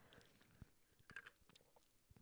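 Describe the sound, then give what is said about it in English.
Someone quietly takes the first sip of hot coffee: soft slurping and swallowing, a few short wet mouth clicks spread over a couple of seconds, with no talking. “I just had the first sip of coffee.”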